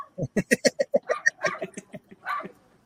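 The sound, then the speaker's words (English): A dog barks in a fast, excited string of sharp yaps, about a dozen close together, loud, slowing and becoming more ragged toward the end. “Because I don't see this dog stopping all the third time.”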